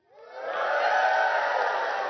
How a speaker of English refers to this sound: Let's try that. Let's just say, next time this happens, you guys just start cheering. We'll pretend. We're going to receive our gifts and tithes and offerings now.